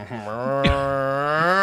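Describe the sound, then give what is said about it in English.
A single cow moo, a long, steady, low lowing call that holds for over a second with nothing else around it, broken briefly by one short click partway through. “Hey, cow, give me your money.”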